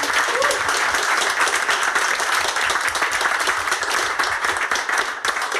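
An audience applauds steadily, a dense wash of many hands clapping at a sustained, loud level for several seconds without a break, with no one talking over it.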